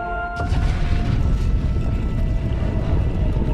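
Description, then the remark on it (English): An automatic door opens with a sudden, loud mechanical whoosh and low rumble that cuts in after a faint humming tone and holds steady for several seconds, with no voices. “You just walk up to the door and it opens.”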